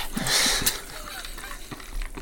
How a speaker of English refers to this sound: No, it's not a can of John Smith's. It's a can of Evervess tonic water to go with my gin.